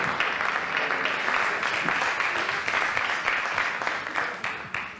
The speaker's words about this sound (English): So can we just give him a clap as he gets up? Make him feel super uncomfortable.